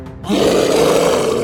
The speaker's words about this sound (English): The beast leaned in aggressively towards the closest wolf and let out a large growling hiss.